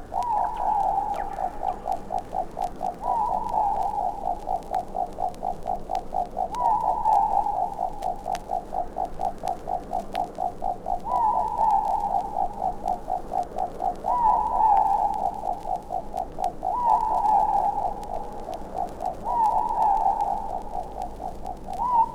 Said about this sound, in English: The owl's ghostly calls were often a bad omen to the Maori people. There are countless legends about Ruru in Maori folklore, and most are about impending danger.